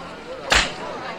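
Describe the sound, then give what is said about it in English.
A single crisp slap on the buttocks, given by James Bond to Dink in the 1964 film Goldfinger, lands loud, a sharp smack that fades quickly over a low bed of background voices. “Ooh, and just for emphasis, Dink gets a slap on the butt from Bond.”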